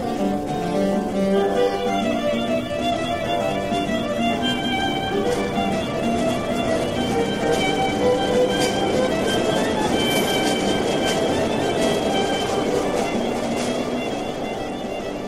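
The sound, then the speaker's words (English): A steady, loud rumble of an uptown subway train in motion, with rattling, clacking wheels and faint high metallic squeals layered over a constant low drone, no voices heard. “Anyway, let's take an uptown train.”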